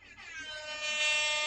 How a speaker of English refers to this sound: Love a good air horn. Yeah. Hooray, now I don't have to edit it in.